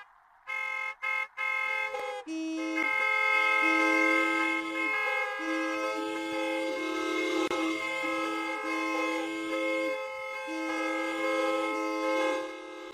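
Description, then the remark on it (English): Cars lined up between the Spectrum and the Vet at the sports complexes honk for Herschel: a few short toots break out, then a chorus of car horns blares together in a long, loud, sustained overlapping honk, different pitches stacked and wavering for over ten seconds. “All lined up to honk for Herschel.”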